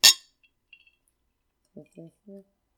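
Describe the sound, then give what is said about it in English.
A single bright glass clink rings out and fades quickly, like glasses touched together in a toast, followed after a pause by a few short spoken syllables. “It's time for a wine break. Cheers me.”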